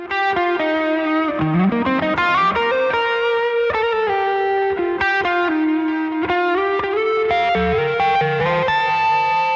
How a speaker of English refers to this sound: A lot of times in a song like this in this era, you would have a guitar solo. Guitar solo totally makes sense. Nice, juicy, electric guitar tones soaring, quoting that melody.